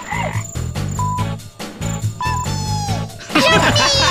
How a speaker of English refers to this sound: There was a sound effect in this game that I loved, which is when you're in the swamp, you have to fire flies. You have to shoot flies into the mouths of frogs, and the flies make a sound that is this sound. Here we go.